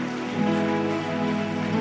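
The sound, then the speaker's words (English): A crowd claps steadily for about two seconds, a dense, even patter of many hands with no talking, over a sustained musical tone beneath. “Clap and give God the glory.”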